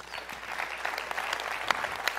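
An audience applauds steadily, a dense crackle of many hands clapping at once with scattered sharper claps standing out, sustained at moderate loudness with no voices over it.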